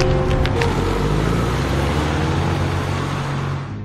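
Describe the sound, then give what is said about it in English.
A car engine roars loudly and steadily with a rumbling low drone as a man steals the car, then begins to drop off slightly at the very end as the vehicle pulls away. “I can't believe that man stole my car.”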